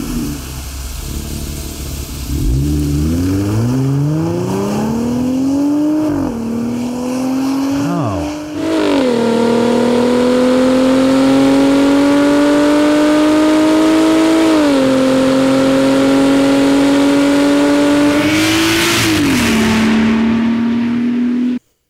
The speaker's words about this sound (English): That is an application you have not heard before. Borla exhaust system.